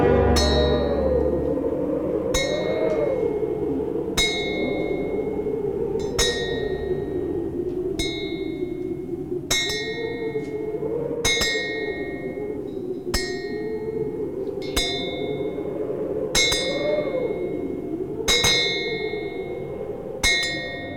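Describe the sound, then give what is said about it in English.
A clock bell strikes twelve times in slow, evenly spaced strokes, each bright chime ringing out and fading over a steady low droning background. “As the last stroke of 12 ceased to vibrate, he remembered what Jacob Marley had told him.”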